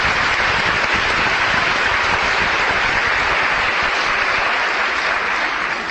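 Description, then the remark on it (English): An audience applauds steadily for participants in an essay and poster contest, a dense, even wash of clapping hands that stays loud throughout without breaks or voices. “Let's give another round of applause for all of those wonderful participants in the essay and poster contest.”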